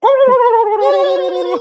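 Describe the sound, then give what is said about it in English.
A turkey call sounds a single loud, steady, reedy note with a slight warble, lasting under two seconds, with no voices. “Yeah, she had the fucking turkey call in the bedroom the other night.”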